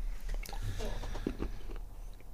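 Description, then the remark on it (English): Crunchy chewing of a hard Lifesavers Fruit Tingle candy egg during an eyes-closed taste test, with several quick crisp crackles and wet mouth sounds over a low steady background hum; no one speaks. “Okay, he's got the munch down.”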